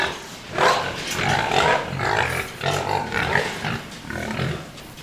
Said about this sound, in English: Okay, this is the gas station house. It's 100 feet long by 34 feet wide, a sow on one end, and I have 12 pigs to the pen, growing pigs. And I got roughly 130 in here.